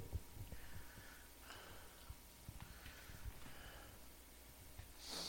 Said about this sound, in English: Getting excited, I'm breathing hard.